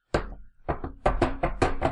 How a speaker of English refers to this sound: And he, just slams it a bunch of times against one of the legs of his easel.